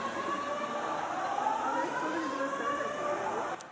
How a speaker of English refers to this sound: Let me show you the video. Just when we thought we could control everything, the fire alarms go off.